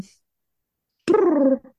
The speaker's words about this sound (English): I heard a cat. Was the sound of Big Chopper.